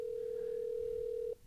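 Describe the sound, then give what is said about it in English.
A phone's ringing tone on an outgoing call: one steady, mid-pitched electronic tone that holds for over a second and then cuts off abruptly, heard alone with no talking. “I'm calling him right now.”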